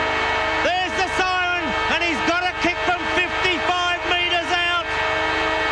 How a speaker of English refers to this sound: And from that point then, it's full of drama. Siren sounds!